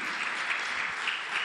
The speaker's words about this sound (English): You should be excited about this thing. You should be clapping by now. I don't know what you want to clap for.